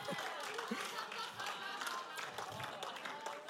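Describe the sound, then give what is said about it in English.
A church audience in India clapping together on the offbeat in a steady rhythm, dense and lively, with voices mixed into the noise throughout. “So the awesome thing about India is they clap on the offbeat.”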